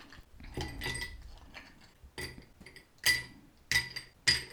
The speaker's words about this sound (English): And then after that, you're going to add your ice. And you want to add a decent amount of ice. So I would fill your rocks glass maybe like 3/4 full of ice.